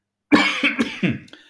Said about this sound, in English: Sorry, I'm going to cough. I do apologize.